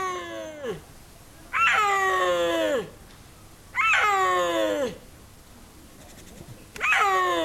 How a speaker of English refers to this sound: Seeing a snow leopard in the wild is rare enough, but cameras in China have captured the moment one called out.